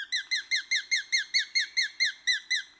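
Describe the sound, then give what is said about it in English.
A sharp-shinned hawk calls a rapid, evenly spaced series of about a dozen high, piercing kek notes, loud, with nothing else in the background. “And the sharp-shinned hawk.”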